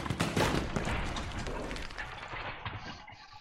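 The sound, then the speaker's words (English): A heavy footlocker is being thrown around a room by Sir Muntz as he tries to open it, making a rapid series of loud, sharp bangs and clattering crashes that are strongest at the start and gradually ease off, with no voices. “Sir Muntz has finished eating the ham and is proceeding to try and open this footlocker, and is just, like, throwing it around the room.”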